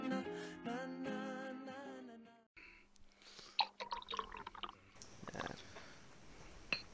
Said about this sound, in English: I'm just pouring myself a glass of delicious Kirin Ichiban beer. Japan's really premium beer.